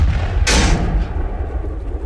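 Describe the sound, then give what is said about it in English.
A single loud cannon shot booms out with a sharp crack, then fades into a low, lingering rumble that continues to the end. “As it comes out, it actually, the cannon kind of falters and leans over, and your hull takes 5 damage.”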